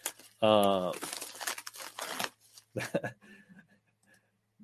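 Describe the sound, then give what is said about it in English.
A mailed package is cut open with scissors and pulled open, with bursts of crinkling and tearing plastic or paper over a few seconds after a short voiced sound at the start, then quieter rustling. “So he's getting the old battle braid scissors out. I'm going to see what Sycamore sent me.”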